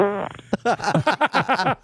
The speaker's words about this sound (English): All right, number four. Whose 2003's fart is this? Yeah, that's a sound effect.